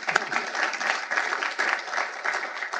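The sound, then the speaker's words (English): A crowd applauds steadily in honor of a former Portuguese instructor from West Point, many hands clapping in a dense, even wash of sound that holds at a fairly loud level for a few seconds without any talking. “So we should give him a round of applause.”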